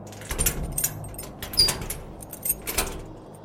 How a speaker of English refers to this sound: Smoldering blue light outlined the secret door, and I felt something give as I turned the pommel like a key.